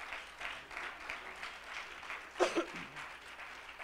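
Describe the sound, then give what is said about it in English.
A church audience claps their hands in praise of the Lord, a sustained applause with a dense patter of many hands at a steady level, and a brief voice rising over it partway through. “Oh, let's give the Lord a hand clap of praise.”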